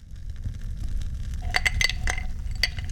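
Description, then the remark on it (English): Small handcrafted resin dice rattle and clink against a glass in a quick cluster of bright ticks, a few sharp taps standing out over a low, steady background rumble, by a fire. “You've caught me here sitting by the fire and enjoying a glass of fine resin dice.”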